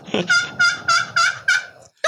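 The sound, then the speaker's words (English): A turkey box call produces a run of five raspy, evenly spaced yelps imitating a young hen, fairly loud, with no talking over it and a short scrape at the end. “So I got three different calls on my box call. So I started out with a young hen.”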